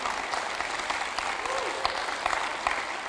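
A church audience claps steadily for its pastors, dense overlapping applause with sharp individual claps poking through, a brief faint voice rising beneath it.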